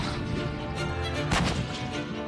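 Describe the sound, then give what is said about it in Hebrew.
A veteran Merkava tank's cannon fires once, the first live fire, during Company A's training at Tze'elim: a single sharp booming blast that rises briefly above a steady, loud, rumbling mechanical drone that continues throughout. “תפילת אש ראשונה. יורה? יורה? יורה נהדר.”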